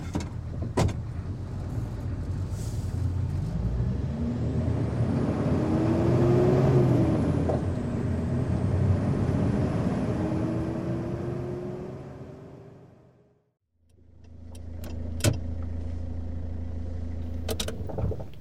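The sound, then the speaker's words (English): A car engine hums steadily with road rumble and rising and falling whine while sitting in a car somewhere in Houston, fading briefly to near silence before the engine noise returns with a few clicks and knocks. “Sitting in a car, somewhere in Houston.”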